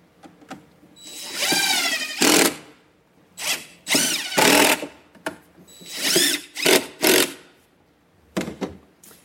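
Loud bursts of a power drill whirring up to speed, several short spins in a stop-start rhythm with brief pauses between, plus a few clicks and clunks of handling.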